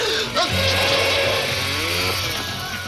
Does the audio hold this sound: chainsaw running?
yes